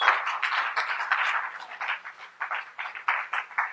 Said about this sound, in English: You can be seated and give the Lord one more hand clap of praise.